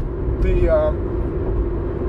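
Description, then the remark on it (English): Steady low rumble of road noise inside a moving car, constant and fairly loud throughout, with a brief murmur of a voice early on. “But that's recording in the car, guys.”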